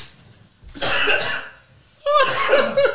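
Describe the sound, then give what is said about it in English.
Two harsh coughing fits, each a rough burst of about a second, separated by a short pause. The second fit sounds slightly more voiced and strained. “Bro, I'm just coughing and I've not even had anything.”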